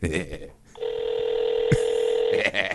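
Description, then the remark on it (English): A single steady electronic touch-tone telephone tone as a phone number is dialed, holding for over a second and a half, clear and fairly loud, with brief bits of voices just before and after it. “Hope they don't give his phone number out.”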